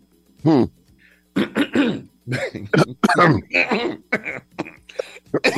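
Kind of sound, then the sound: human body sound, coughing and throat clearing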